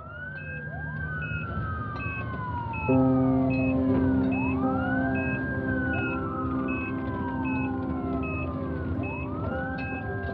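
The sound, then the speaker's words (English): A loud ambulance siren wails as an ambulance arrives, in repeated rising and falling sweeps over a steady low engine rumble, with a short beeping pattern running above it and no voices. “An ambulance arrived and Alex was sedated by doctors.”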